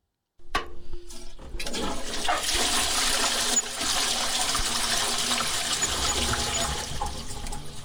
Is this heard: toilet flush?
yes